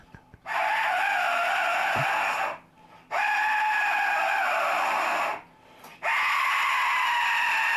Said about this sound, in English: Here we have the Lee whistle. The Lee whistle? And the large whistle.